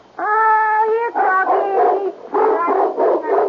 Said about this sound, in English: I'm doggy! Yes, a Doberman Pinscher. It's a present from the National Kennel Club. Their card says that... Here. For your protection, a man's best friend.